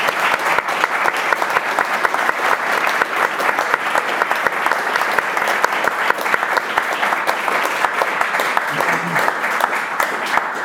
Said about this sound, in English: I hope you can all join me in giving a massive round of applause to our excellent panellists.